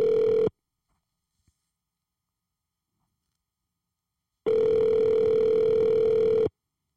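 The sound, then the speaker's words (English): An outgoing phone call's ringback tone: a steady, mid-pitched electronic buzz that briefly ends, falls silent for about four seconds, then sounds again for two seconds, loud and with no voices. “Let me call this person right here, man.”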